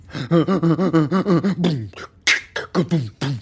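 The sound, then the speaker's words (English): A voice making rhythmic vocal percussion: a quick run of about ten pulsing, pitched grunts, then sharper breathy hisses and percussive bursts, fairly loud and with no other talking. “I'm beatboxing.”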